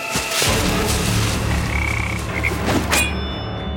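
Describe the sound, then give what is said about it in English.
A toad croaks in alarm, loudly and harshly, a rough, continuous rasping call for several seconds that ends with a sharp burst before cutting off. No one speaks. “The toad croaked in alarm and leapt toward the water, but not quickly enough.”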